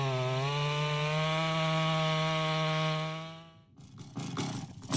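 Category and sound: tool, chainsaw cutting wood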